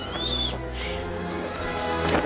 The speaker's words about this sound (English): Bloody birds of menace.